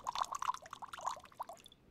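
Sherry pouring into a glass, a bubbling, gurgling stream with rising glugs that tapers off after under two seconds; clear, no voices.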